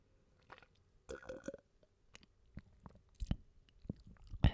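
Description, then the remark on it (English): Someone drinking into a microphone in ASMR style: a series of wet sips, lip smacks and swallowing gulps, irregular and crisp, louder toward the end, with no talking. “So I'm going to do an ASMR water drink right now.”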